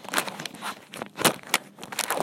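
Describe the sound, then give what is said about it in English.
Crinkling and crackling of thin plastic, with a few sharper snaps and crunches over about two seconds, as a water bottle's cap is twisted open and the bottle squeezed. “And, yeah, let's go ahead and crack the water.”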